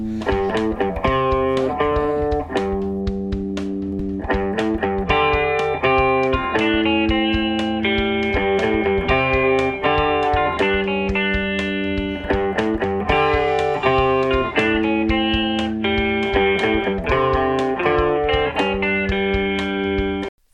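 A loud, distorted intro music track comes through as interference for about twenty seconds, with sustained harsh chords over a steady, punchy beat, sounding like an unexpected feed bleeding through. No one speaks.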